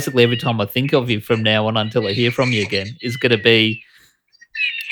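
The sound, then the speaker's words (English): Seagulls call faintly while a person talks steadily, with a few thin, high cries standing out briefly during a pause near the end. “I can hear some seagulls in the background there.”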